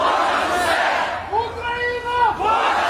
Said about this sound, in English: Kherson residents have been flocking to the city's central square with Ukrainian flags to cheer and celebrate the victory.